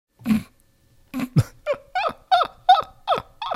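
A chicken clucks loudly, about nine sharp, squawky clucks after a brief opening one and a short pause, coming in a quick, uneven rhythm with no one talking.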